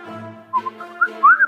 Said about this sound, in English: …, just, like, whistle and lead the way.